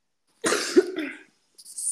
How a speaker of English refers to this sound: Sorry, I was having a cough break there.